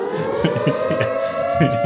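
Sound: alarm siren sound effect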